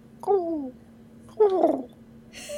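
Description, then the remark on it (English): A person imitates goose cooing with two short, wavering calls, the second rougher and more clustered, while calmly stroking a goose, over a faint steady hum. “I'm imitating goose cooing sounds.”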